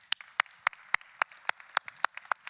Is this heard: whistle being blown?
no